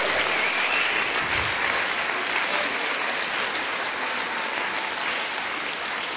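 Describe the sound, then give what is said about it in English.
A crowd at a religious gathering applauds Jesus steadily for several seconds, a dense, even wash of many hands clapping at constant loudness with no speech over it. “Let's applaud Jesus, shall we?”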